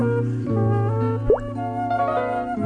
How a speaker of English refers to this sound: Something wet fell on his head. Drip, drop, plip, plop.